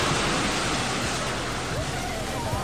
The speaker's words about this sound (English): A huge search and rescue operation is underway in Japan tonight after a landslide swept away an entire section of a city. Locals could hear it before they could see it. A wall of water and mud collecting everything in its way.